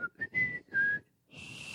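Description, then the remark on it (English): Someone who never learned how to whistle attempts to whistle, producing a few thin, wavering whistled tones in short breathy bursts, mostly air with faint pitch, ending in a long hissy exhale without a clear note. “Fun fact, I never learned how to whistle.”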